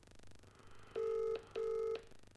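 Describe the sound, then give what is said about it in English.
Two sustained electronic phone tones, each about half a second long with a short gap between them, loud over a faint low background hum, as a call rings out to someone driving from Wales to London. “is driving home from Wales where he's been for the weekend, and he's driving to London, so I'm going to phone him.”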